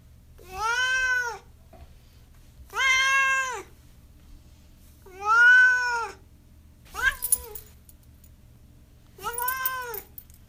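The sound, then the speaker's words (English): A cat named Duarte meows five times at a steady pace, each call a drawn-out, rising-and-falling cry, fairly loud over a low steady hum, with no talking. “Speaking of hardcore, let's now move to Duarte's corner, where my cat Duarte will offer his opinions about the book.”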